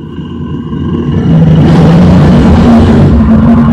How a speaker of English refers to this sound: There it is. And a little bit of an elephant there at the end, just for good measure. That's a weird combo of a bear and an elephant.